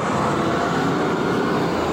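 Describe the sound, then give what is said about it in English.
A bus rumbles loudly past, a steady wash of engine and road noise filling the whole stretch with no voices over it. “Thanks to the bus.”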